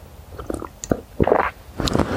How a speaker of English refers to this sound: Quick sip of tea.